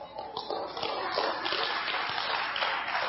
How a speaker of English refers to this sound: How many love the Bible? Amen. Well, that's what we're looking at. Go ahead and clap.